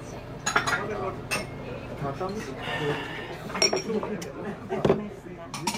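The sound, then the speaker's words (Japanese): Glasses clink together in a toast over after-work drinks, a few sharp chimes scattered over the steady hum of a busy restaurant, with people chatting in the background. “じゃあ乾杯。”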